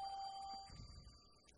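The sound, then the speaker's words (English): A phone rings faintly in the background, a thin electronic ringtone of steady high tones sustained through the moment, with some low muffled rumbling and no talking. “I'm having my cornet moment right now with the phone fucking ringing.”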